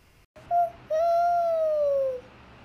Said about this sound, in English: But we got a few owls. We do. Wait. Here they come. I can hear them. Oh, my gosh.